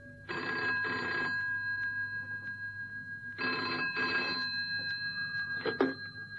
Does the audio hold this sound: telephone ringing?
yes